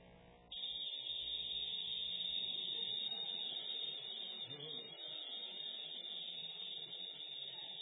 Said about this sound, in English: Cicadas, well done. Cicadas, any of you heard cicadas? Oh, I was camping in Georgia a couple years back, and I was like, what in the world is this? I was terrified.